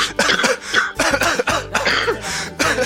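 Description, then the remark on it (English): A loud fit of repeated harsh coughing, a rapid run of rough bursts one after another with throat-clearing rasps, and no pause for talk. “Right, we should end with a big coughing fit.”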